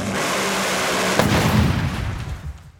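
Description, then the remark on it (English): A Top Fuel dragster engine, running on nitromethane rather than gasoline and held together by giant straps, roars at full, deafening volume, a harsh crackling blast with a sharp bang partway through, then a deep rumbling surge that fades as it pulls away. “Like a Top Fuel dragster doesn't even run gasoline and runs nitromethane”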